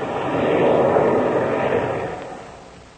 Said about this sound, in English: Oh, hey, listen, Chuck. Listen to that. Shark throttled his engines. We're going down to land.